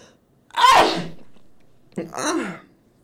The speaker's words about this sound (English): I have to fucking sneeze so hard.